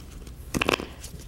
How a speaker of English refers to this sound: Okay. I'm going to shuffle the deck.